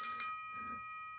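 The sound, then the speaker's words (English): A small bell is struck twice in quick succession, then its bright metallic tone rings on and slowly fades over a faint low background murmur. “We did not tell you what this bell was,”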